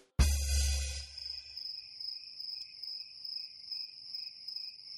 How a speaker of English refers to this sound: Oh no, did I use the crickets? Was that the crickets?